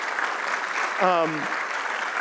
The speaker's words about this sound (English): Congratulations. Hey, one more round of applause for these guys and girls.